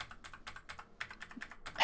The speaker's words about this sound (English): Just like my keyboard. Do you want to hear me press, like, a single key on my keyboard?